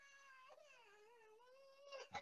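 A small granddaughter cries as she opens a door, in one long, drawn-out wail whose high pitch wavers up and down, ending in a couple of short, sharper sobs. No one else speaks.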